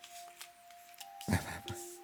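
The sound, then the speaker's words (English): A brief, crackly burst of cards being shuffled, lasting under half a second, set against a quiet steady hum with a few faint ticks before it. “You don't need fancy shuffle.”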